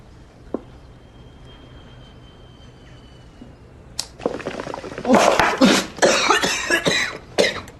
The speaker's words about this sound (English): Got a cough to get off.